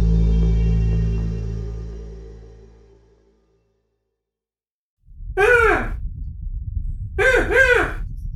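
Two loud, harsh bird squawks ring out about two seconds apart over a rough, noisy background, following a low fading tone and a moment of silence.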